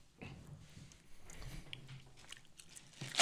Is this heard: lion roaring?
no